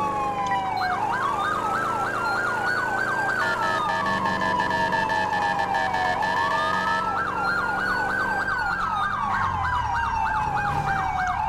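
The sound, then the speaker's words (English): A loud emergency vehicle siren, responding code 3, shifts between a rapid warbling yelp and a slower rising-and-falling wail, sounding continuously over a low rumble of road and engine noise, with no talking. “Can you step it up, code 3?”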